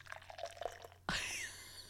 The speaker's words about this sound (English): Wait, I'll pour the can like right now. Oh, yeah, do it.